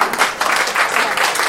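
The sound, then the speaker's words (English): A crowd applauds steadily, many hands clapping together in a dense, even wash of sound that stays loud throughout the short burst. “Let's have a round of applause for our.”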